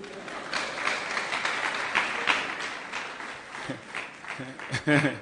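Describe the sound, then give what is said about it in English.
An audience claps steadily for about five seconds, a dense wash of many hands with voices calling out underneath, swelling into a few louder bursts near the end. “If you want to clap, clap.”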